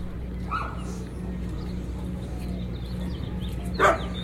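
A dog gives a couple of short barks, one early and one sharper near the end, over a steady low electrical hum.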